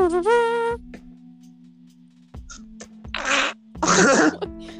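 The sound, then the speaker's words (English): A voice imitates a fart with a buzzy, trumpet-like blast, then after a quiet pause makes two louder, wet, sputtering raspberry bursts. “Your farts are just like.”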